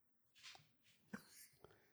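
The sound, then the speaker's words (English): The nails of Kennedy, an old dog with arthritis, click on a hard floor as she comes in, two or three sharp, quiet taps spaced unevenly, with soft breathy rustling around them and no talking. “You can probably hear her nails click when she comes in.”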